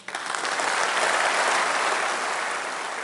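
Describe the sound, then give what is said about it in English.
Sustained applause from a large audience after a speech by Truss announcing tax cuts, a dense, steady wash of many hands clapping at once that stays loud for the whole stretch, with no voices on top. “There was a ton of clapping from the audience, and at points it sounded like she was taking a victory lap.”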